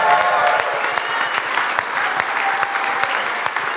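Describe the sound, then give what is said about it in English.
A crowd applauds and cheers loudly in praise of Jesus, dense clapping filling the whole stretch with scattered shouts rising above it, steady and sustained without a break. “Let's give Jesus some praise just one more time before we're seated. Yell it out loud as you can.”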